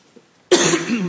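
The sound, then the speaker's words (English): A speaker clears their throat once, loudly and abruptly after a brief quiet pause, a rough, raspy rumble lasting about half a second with no talking. “Sorry, clear my throat.”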